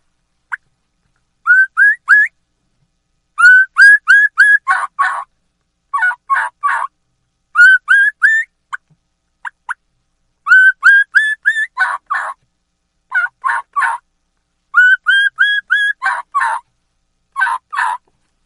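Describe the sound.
A turkey mouth call held in the mouth imitates a key-key run: sets of rising high whistles followed by raspy yelps, repeated in several clear bursts with short pauses between them and no talking.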